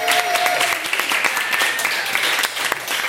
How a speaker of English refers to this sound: So thank you very much for coming to this impromptu Judge John Hodgman Labor Day weekend meetup here at the Rendezvous. Big round of applause for the people here at the Rendezvous.